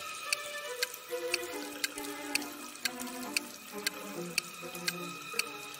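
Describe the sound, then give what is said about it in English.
Water runs from a faucet on a wall in a steady, moderately loud stream, with sharp drip-like clicks landing at a regular pace throughout. No one speaks. “You're trapped in a room that's slowly getting filled with water, coming from a faucet on the wall.”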